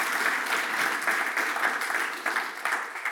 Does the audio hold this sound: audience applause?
yes